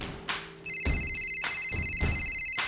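A telephone rings with a steady, high electronic trill, sustained over a regular low thumping pulse that repeats about every half second, and is left unanswered to go to voicemail. No one speaks.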